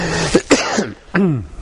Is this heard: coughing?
yes